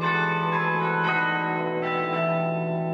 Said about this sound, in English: I've been playing every week a recital which I call Bells of Hope, to try and lift people's spirits